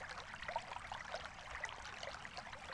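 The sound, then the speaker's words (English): A gently flowing stream babbles steadily at a soft, even level, with small bright trickles and splashes over a continuous watery wash, heard alone without any voices. “You are sitting beside that stream on a bed of soft grass.”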